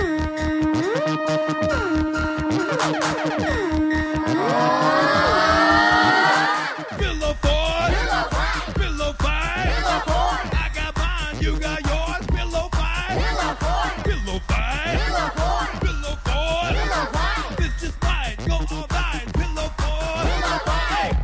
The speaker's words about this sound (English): Here we go. Drop that beat. Now the beat's gonna come in soon, y'all. So I hope you get ready. Here comes the bass line. Oh, man. I hope you got them subs right.